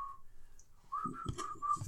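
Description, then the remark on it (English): A failed attempt at whistling: mostly breathy blown air, with a thin, wavering tone breaking through in short, unsteady bursts before fading back into hiss. “It was just like air coming out.”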